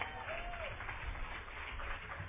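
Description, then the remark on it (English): A crowd gives a warm round of applause to welcome a flute player, a steady, dense wash of clapping that holds at an even, fairly soft level throughout, with no voices standing out. “So let's give her a warm round of applause.”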